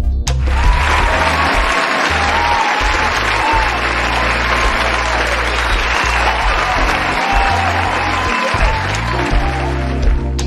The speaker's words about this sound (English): All right, so just in case if you're wondering why the round of applause, it allows me to breathe small, okay, before we get started.